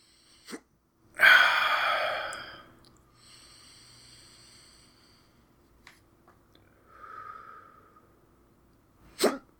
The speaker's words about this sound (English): I'm dying. I mean, we can't start until these hiccups stop. They might never stop, though.